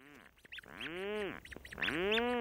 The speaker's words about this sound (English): Rhinoceros auklets are relatives of puffins, medium-sized, dark gray duck-like birds that spend their days at sea and then return at night with fish for their single chick hiding deep in a burrow.